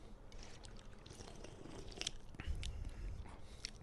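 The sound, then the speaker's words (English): Someone takes a quiet sip of a fizzy seltzer, with soft wet mouth sounds and a faint crackle of carbonation over a few seconds and no talking. “All right, let's give it a sip.”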